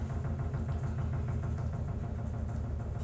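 A washing machine runs with a steady, low mechanical rumble and a faint rhythmic pulsing vibration, continuous throughout with no voices.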